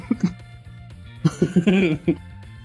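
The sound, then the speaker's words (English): A person acts out wet, sputtering coughs as if coughing up blood: two quick coughs, a brief pause, then a rapid cluster ending in a strained, gurgling groan, over a faint steady hum. “As I probably cough up some blood.”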